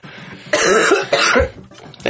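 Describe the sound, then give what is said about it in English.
Two harsh coughs in quick succession, each a broad burst of noisy sound, with a raspy throat-clearing quality and no speech. “You got his cough too.”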